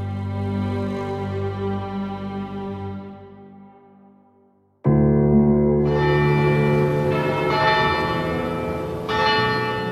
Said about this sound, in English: Bells rang out across Manchester on Saturday night, exactly 4 years after the horrific bombing at the Manchester Arena.